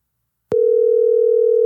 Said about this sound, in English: And this ringtone is brought to you by.